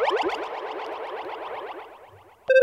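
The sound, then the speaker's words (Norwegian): A short jingle drenched in added echo, its bright notes repeating and smearing into one another as they slowly fade, then a sudden clean tone cuts in at the end. “Hillary Clinton vil tydeligvis ha ekko på jinglene sine.”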